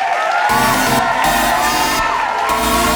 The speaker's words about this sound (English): Denise entered the stage to rapturous applause. There were whoops and cheers.